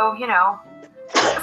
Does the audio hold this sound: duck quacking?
no